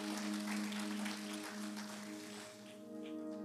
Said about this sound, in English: Can we give her a round of applause?